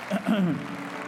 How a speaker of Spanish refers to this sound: Ahora ha sido un aplauso al Señor por ellos. Wow, gloria a Dios.